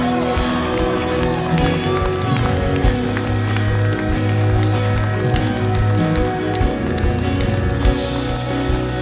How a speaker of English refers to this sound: Oh, just one more time for the Holy Spirit. Then I just want you to put your hands together and give him a praise.